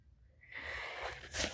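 A heavy, airy breath, a long hissing exhale that swells and ends in a stronger, rougher puff, with no talking.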